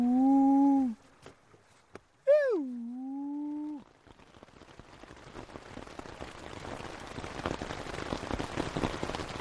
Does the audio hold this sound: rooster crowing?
no